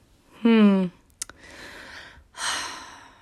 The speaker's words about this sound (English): I seriously get too excited about these podcasts. Like, do you hear me panting? Like, I'm literally out of breath. Maybe I just need to, like, get my lungs better.